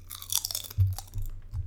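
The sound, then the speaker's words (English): Loud crunching of Cape Cod salt and vinegar potato chips being chewed, with several crisp bursts of bite and mouth noise in quick succession and no talking. “Why don't you give us a little crunch?”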